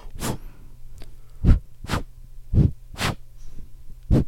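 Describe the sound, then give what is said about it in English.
Six or so sharp, breathy puffs of air blown straight into a microphone to make its volume meter move, each a short rumbling whoosh, spaced unevenly over a low steady hum, with no talking. “How are you blowing? Like you're going to whistle?”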